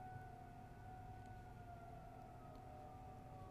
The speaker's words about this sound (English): I love a good siren. I enjoy anything that sounds like there's something more than me going on. Okay, it's done.